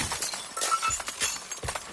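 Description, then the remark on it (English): A heavy brass cuspidor is flung through a frosted glass door into California Street in San Francisco; the door shatters loudly into bright, jangling shards that keep tinkling and clinking for a couple of seconds. No voices are heard. “As the men hurled themselves upon me, I swung the cuspidor high and flung it over their heads, through the frosted glass door into California Street.”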